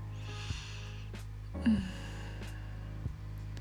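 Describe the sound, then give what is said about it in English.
Slow, deep, soft breaths drawn in and pushed out through the nose by a person with their face toward a pillow, breathing in the scent of their own body, repeating in a few unhurried cycles over a steady low background hum. “Breathing the delicious scent of my body in and out.”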